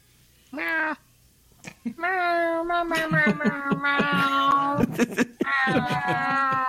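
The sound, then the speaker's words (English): A person imitates a cat, giving a short meow followed by long, drawn-out wavering mewls, loud, with a brief pause before a final stretched meow. “Kitty. Meow.”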